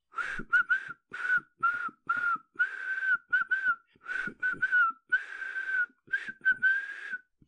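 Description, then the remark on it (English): Someone whistles the Marseillaise slightly off-key while clearing away the tea things, a steady run of short and held notes in choppy phrases with brief gaps between them, with no talking. “Begins to clear away the tea things, whistling the Marseillaise out of tune.”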